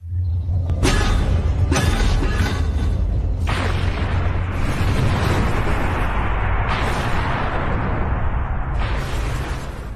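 A storm sound effect, played by pressing the wrong button: sharp cracks of thunder in the first couple of seconds, then a steady, loud roar of rain and wind over a deep low rumble, with no voices.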